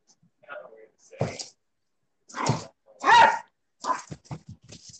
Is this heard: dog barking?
yes